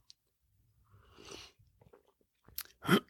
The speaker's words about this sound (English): Before we do, however, let me just take a sip of my preferred beverage.